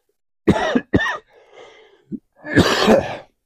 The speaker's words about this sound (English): Excuse me. I thought I would be all better today. I'm counting down. I got about 80 days left on this 100-day cough or whatever.